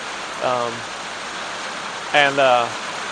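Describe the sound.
Steady rain hisses throughout, an even wash of falling water, broken by two short voiced sounds from someone.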